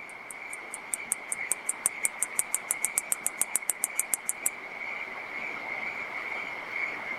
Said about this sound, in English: So that very distinct, that clicking sound, what is that and how do they do that? So that's the sound that the male katydid makes as he rubs his forewings together.